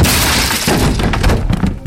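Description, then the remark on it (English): A door caves in, splintering and breaking from its hinges and landing on a hardwood floor, a loud sustained crash of cracking wood with heavy thuds and clattering debris throughout, no voices. “Harmon breathed heavily and only had time to turn onto his back when the door caved in, breaking off the hinges and landing with a loud bang upon the hardwood.”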